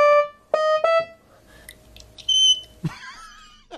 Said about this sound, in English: That was a fire smoke detector.